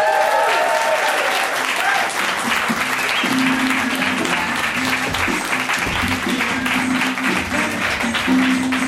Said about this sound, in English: Why don't you guys give a big round of applause for your host, the incredible Greg Proops!